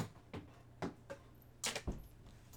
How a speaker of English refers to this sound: The thumping you hear, boys and girls, is a big dog's thick tail just knocking on whatever the hell her butt is next to.